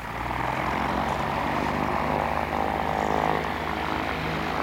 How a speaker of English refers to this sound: The pilot had removed the extra seats on the mainland to make room for my many boxes. Together, we quickly loaded the plane, then strapped in and took off.